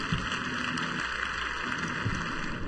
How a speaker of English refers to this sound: Let's please give an applause to the guest.